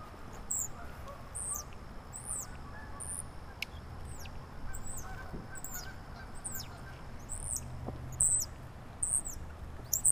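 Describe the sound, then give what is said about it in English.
A flock of geese honks repeatedly overhead, their calls coming in a steady series of bright, nasal notes over a low outdoor rumble, with no talking. “Those geese are up overhead again.”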